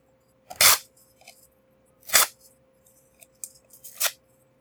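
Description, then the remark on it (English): A paper game card is ripped up in three short, sharp tears spaced a second or two apart, with faint rustling and crinkling between them and no voices; a player tears up a used card during a tabletop dice game. “And then I'd like you to rip up your moment also, as you are using it now.”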